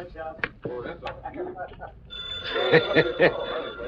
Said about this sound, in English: Get that phone ring.